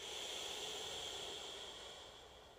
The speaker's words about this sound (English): Take one final breath in together.